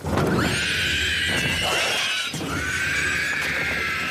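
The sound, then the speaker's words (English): A harsh, piercing screech of a Ringwraith from the film The Lord of the Rings, a shrill wavering shriek that sweeps and rasps continuously for about four seconds, loud throughout with a brief dip midway before rising again; no talking. “Here's a screeching ring wraith in The Lord of the Rings.”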